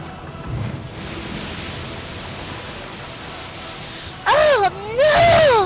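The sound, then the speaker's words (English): A steady, heavy roar of a stormy sea with surging waves around a ship that is off course fills the scene, then two loud, wavering howls burst over it near the end. “We're off course and the storm is brewing.”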